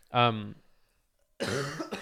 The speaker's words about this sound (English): I hope you're not coughing. What? Right now, without just for the listeners, this fuck face fuck nut just coughed without covering his fucking mouth.